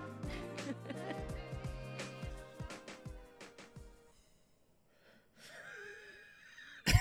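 Upbeat music with punchy beats fades out, and after a brief hush a person sitting at a table lets out a drawn-out, breathy yawn with a wavering voiced tone, fairly loud, at about noon.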